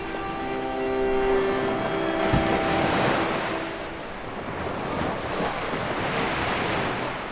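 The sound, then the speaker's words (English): Ocean surf washes and breaks in a steady, rushing roar that swells and eases, with a faint sustained tonal hum in the first couple of seconds and no voices. “So, you know, you go back to childhood and just play in the surf.”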